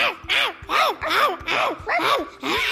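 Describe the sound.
A person imitates Champ, a dog woken by the doorbell, barking with a quick, steady string of about seven loud, voiced "woof" sounds, each rising and falling in pitch, with no other talking.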